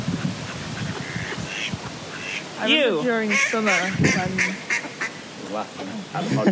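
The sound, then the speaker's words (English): A duck quacks and honks repeatedly close to the microphone, its harsh, nasal calls coming in uneven bursts over a noisy outdoor background with some faint human voices. “During the summer when this dried up, the ducks looked so angry.”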